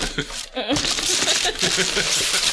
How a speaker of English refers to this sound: Gotta take it off without ripping the paper. No, don't. It's already ripped down there.